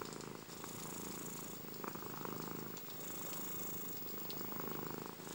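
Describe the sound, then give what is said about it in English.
A sleepy cat curled up napping purrs steadily, a continuous low rumbling with a soft rhythmic pulse as it breathes in and out, with no voices. “As you draw closer, you see a sleepy cat curled up, catching a nap, completely comfortable and carefree.”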